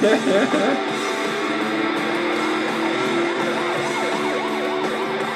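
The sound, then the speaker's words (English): A siren wails in rapid rising-and-falling sweeps, growing clearer over the second half, set against a dense, steady wash of background noise at a moderate level. “Siren sounding.”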